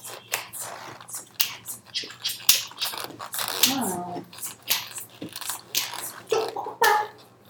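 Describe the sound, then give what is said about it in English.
A voice beatboxes a steady drum pattern based on the words "boots and cats", alternating sharp kick-like pops with crisp, hissy snare and hi-hat sounds in a quick, even rhythm, mouth-made and fairly loud. “If you want to learn how to beatbox and you don't know how to, there's two words that you need to know.”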